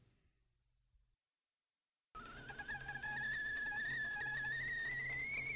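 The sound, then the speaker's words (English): After a moment of near silence, a kettle's shrill whistle starts abruptly as water boils and holds loud and steady, its piercing tone creeping slightly higher in pitch as it keeps going. “Do you hear that whistling sound? I do. That sounds like a kettle boiling.”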